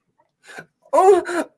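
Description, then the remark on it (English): A voice makes imitation porn noises of exaggerated sexual moaning: a breathy gasp, then two drawn-out, loud moans with a rising-and-falling pitch, heard alone with no other talk. “I make pretty good porn noises, my guy.”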